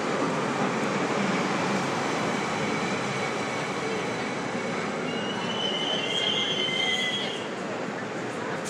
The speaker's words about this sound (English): Oh, you know what? I'm going to take you with me while we ride on the train. That's always fun. Hearing the train sounds. Hearing the ambiance.